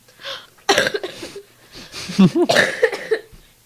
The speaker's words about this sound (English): One second. I have to cough. Keep talking.